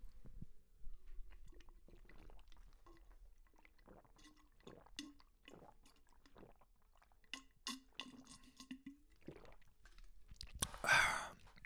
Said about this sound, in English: Let me get a big thing of water. This has been my move, is like just chugging a big thing of water. Not like a ton of it, but I'm going to chug some water.